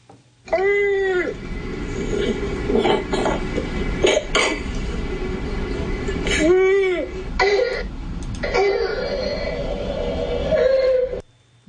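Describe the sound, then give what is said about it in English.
A child's harsh, barking croup cough repeats in several bursts, broken by high-pitched, wheezy whooping breaths of stridor as the child gasps in between, fairly loud. “So I think we're just going to listen to the barking cough that you refer to, which is caused by this condition, croup.”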